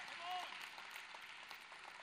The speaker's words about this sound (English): Clap today if you're excited.